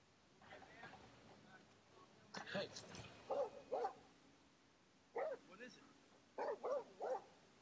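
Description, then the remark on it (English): A dog gives short, sharp barks in quick clusters of two or three, with softer whimpering whines between them, moderately loud. “Oh, there's the dog thing.”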